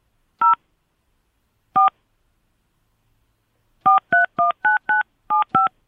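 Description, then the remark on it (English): Phone keypad tones dialing a 10-digit cell phone number: two separate beeps, a pause, then a quick run of eight more, each a clear two-pitched tone, fairly loud, with silence between. “Please enter your cell phone number as a 10-digit number, including the area code.”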